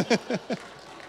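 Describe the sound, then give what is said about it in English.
A few sparse, unenthusiastic pity claps from an audience after a pun, three quick hand smacks in an uneven rhythm that trail off into near silence after about half a second. “Okay, that is such a pity clap.”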